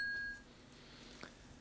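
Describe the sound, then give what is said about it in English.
A single short, bright bell ding that rings for a fraction of a second and fades quickly, followed by a faint quiet background with a tiny click. “The bell is red hot tonight.”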